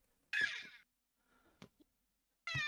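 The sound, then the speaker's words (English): A loud, raspy squawking squeal like a squeezed rubber chicken toy, heard twice: one half-second burst, then a second cut off at the end, with a faint rustle and click between. “Sounds like one of those chickens that you fucking squeeze.”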